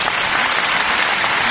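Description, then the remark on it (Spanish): A burst of applause sound effect from many hands, dense and steady throughout, loud with no voices over it. “¿Dónde están mis efectos de aplausos?”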